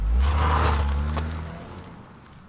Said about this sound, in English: I take a few quick strides toward the door, grab the handle and swing it open, grinning ear to ear, just to see the Amazon delivery driver hop back into his car.